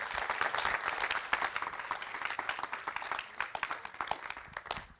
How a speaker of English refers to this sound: So you guys give her a round of applause as she comes.